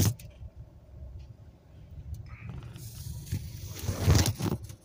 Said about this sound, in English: I had to move my car up.